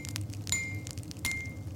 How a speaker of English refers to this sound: Lightly! You aren't pounding tea blocks. My apologies. Caress the blade with your hammer. Think of the techniques that I showed you.